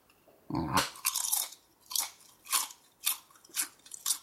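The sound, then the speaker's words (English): A crisp is bitten with a loud, sharp crunch, followed by a steady series of about six brittle crunching chews in an even rhythm, bright and crackly with no talking. “It is a crisp.”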